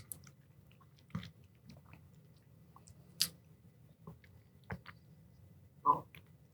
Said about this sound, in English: I'm trying to turn away from the mic because it's definitely a lip smacking. You're crunching a little bit. Crunching. The peanut yes. butter definitely.